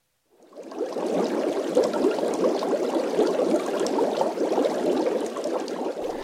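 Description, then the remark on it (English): Steady, dense underwater bubbling made with audio software, with a synthetic quality. It fades in quickly and holds at an even, fairly loud level as a continuous churning fizz with no voices. “The bubble sounds you just heard were from audio software”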